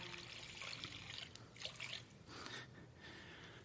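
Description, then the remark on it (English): Water trickles and splashes softly and steadily, a continuous pour with small fluctuations in flow and no voices. “Like baptism with water, and we use this water to as a symbol and a sign.”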